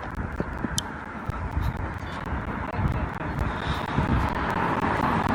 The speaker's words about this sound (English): Wait, before I get run over by a car.